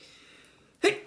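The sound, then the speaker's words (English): A single sharp, loud sneeze bursts out near the end, after a stretch of quiet room tone. “Bless you.”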